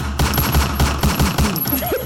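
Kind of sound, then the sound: sound effect, gunshot sound effect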